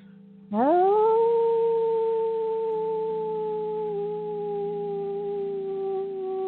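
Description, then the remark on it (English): A circle of people imitate wolf howls together, following one person howling in the middle, one voice swooping upward into a long, loud, steady note while lower sustained howls overlap beneath it for several seconds. “The circle erupts into noise of howls and other animal calls.”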